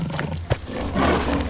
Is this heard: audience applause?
no